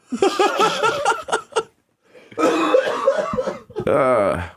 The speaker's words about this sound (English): So why are we always coughing?